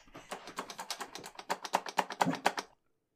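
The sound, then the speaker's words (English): A rapid run of sharp plastic clicks from the strum switch of a Guitar Hero guitar game controller, fairly loud, ticking in a quick uneven rhythm for a few seconds before stopping abruptly. “Okay, brief edit as the Guitar Hero controller clicking caused a massive bark storm, which peaked all of the mic.”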